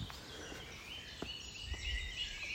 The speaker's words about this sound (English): And the tops of the trees seem full of birds.